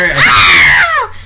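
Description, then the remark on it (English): A woman lets out one loud, high-pitched scream after shooting a man, sustained for about a second before it trails off and falls in pitch. It is intense, with no other sound around it. “And then she shoots him. She does. And she screams.”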